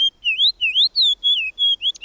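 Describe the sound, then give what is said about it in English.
A fox sparrow sings a loud, lively run of clear whistled notes, rising and falling slurs in quick succession with brief gaps, bright and sweet, with no voices. “A loud, spirited song of whistled notes tells us the fox sparrow is at hand.”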